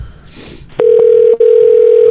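A phone line ringing through a call connection: a loud, steady electronic tone begins after a short quiet moment, breaks off briefly, then resumes and holds. No one speaks.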